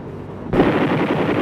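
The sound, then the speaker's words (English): A low, steady Huey helicopter drone is abruptly joined by loud M60 machine-gun fire from the helicopter during a low-altitude firing run over a target area, a rapid unbroken burst of shots that continues to the end. “It's the first time gunner, chopper, and M60 work together.”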